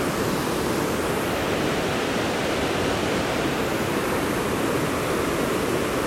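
A steady, unbroken rush of flowing water, like a stream or small waterfall, holding an even level throughout with no pauses and no voices.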